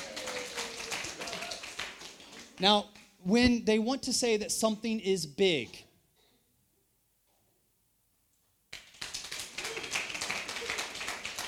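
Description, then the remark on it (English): An audience claps steadily, at the speaker's request during a talk on the Chinese character for people, in a dense wash of hand claps, which breaks off while a man speaks briefly. After a short silence the clapping starts up again just as loudly. “This would be a perfect time to clap.”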